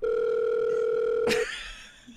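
A steady, loud telephone dial tone hums alone for over a second, then a sharp click cuts in and the tone stops, leaving faint background noise.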